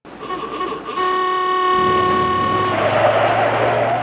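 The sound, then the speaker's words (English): A truck horn blares a loud, sustained chord of several tones for about two seconds over a low engine rumble, which carries on with a hiss after the horn cuts off. “She gets dropped off by the truck guy, and who's got a ridiculous horn on it.”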